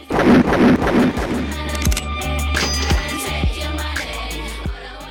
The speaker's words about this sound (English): Finally, of course, we have those samples of the gunshots. That's a little sample fragment that happens. And that those actually come from the game Street Fighter